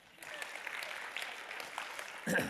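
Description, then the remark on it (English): A crowd claps for themselves, a steady, dense, continuous patter of applause lasting a couple of seconds, with a louder swell and a brief voice near the end. “I think you should clap for yourselves.”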